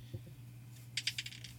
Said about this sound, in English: All right. Roll the D20. Come on, dice.